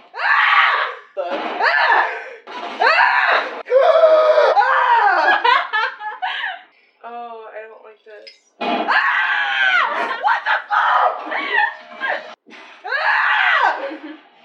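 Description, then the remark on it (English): A rapid string of loud screams by one person, edited into a supercut with abrupt cuts and brief gaps between high-pitched shrieks, some breaking into laughter-like squeals. “The supercut of the scream.”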